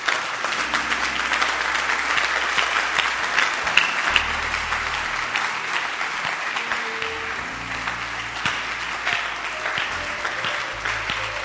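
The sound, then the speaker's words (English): A crowd claps steadily for several seconds, a dense, continuous wash of many hands applauding at moderate loudness, with no voices standing out above it. “You can clap your hands.”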